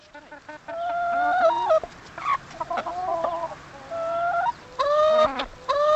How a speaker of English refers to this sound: In a field next to his barn, Huber also keeps free-range hens. They look and sound a lot more at ease.